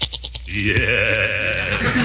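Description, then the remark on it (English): A goat named Horace, held in a temporary goat pen, bleats loudly, a few quick stuttering pulses giving way to one long, quavering, nasal cry that holds for over a second. “Return to the great Gildersleeve, who's putting the finishing touches on a temporary goat pen to hold Horace until he can be sold, given away, or just tied to some fence and ran from.”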